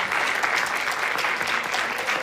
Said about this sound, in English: So if you could give those ladies a round of applause.